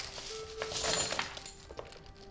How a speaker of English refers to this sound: I don't mean to draw this out. I know dice rolling isn't exactly the most interesting thing. It's but very tense right now. I want to know how much damage this does.